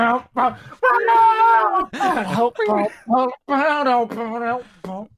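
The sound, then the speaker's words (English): A voice imitates a dramatic anime-intro background scream in a run of loud, strained, wavering vocal bursts with short gaps, with no other sounds behind it. “The scream that they do in the background.”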